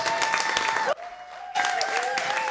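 Loud, dense applause from an audience welcoming a speaker to the microphone, a steady wash of many hands clapping that briefly drops out midway before surging back just as strong.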